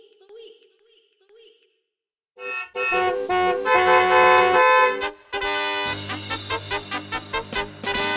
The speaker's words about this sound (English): Honk, honk.